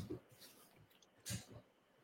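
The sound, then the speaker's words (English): Soft, moist chewing noises come in a few irregular bursts, one slightly louder crunch near the middle, all fairly faint with no one talking. “Get everything chewed up.”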